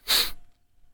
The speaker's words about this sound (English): You got a sniffle? What's happening? Yeah, I think I'm getting a little bit of a cold.